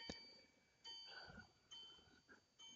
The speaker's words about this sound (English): Okay, you'll hear that from time to time. We believe in chiming clocks in our house.